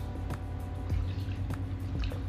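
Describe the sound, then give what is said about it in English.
Water pours steadily with a low, continuous rush while four distinct drips plop down at slow, uneven intervals, fairly loud, with no voices. “Hearing water alone is relaxing.”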